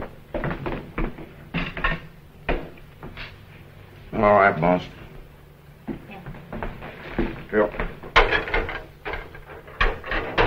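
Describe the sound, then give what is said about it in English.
Dishes and utensils being washed clatter and clink in an irregular string of sharp knocks and scrapes, steady throughout, while a man speaks briefly over the noise. “How about giving me a hand with these dishes?”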